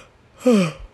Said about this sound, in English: I'm sorry for the yawn.